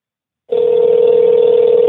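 A telephone ringing tone played loudly through a phone held close to the mic, a steady unbroken electronic hum that starts after a brief silence and holds without any talking.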